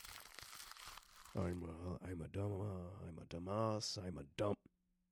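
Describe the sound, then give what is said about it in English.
Paper rustles and crinkles for about a second, a dry crackling handling sound, before a person starts talking and the rustling stops. “Let me see the paper for a sec.”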